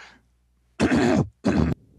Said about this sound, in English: Can you stop it for just one moment? Sure. I want to clear my throat.